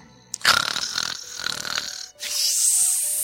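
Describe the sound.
A person imitates a snore: a loud, rattling, fluttering inhale lasting about two seconds, then a breathy, hissing exhale. No speech.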